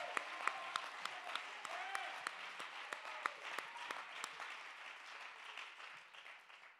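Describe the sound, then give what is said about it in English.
A crowd claps hands together, a dense sustained applause with sharp individual claps popping out in an uneven rhythm, fading slightly toward the end; a few voices murmur underneath. “Let's clap our hands.”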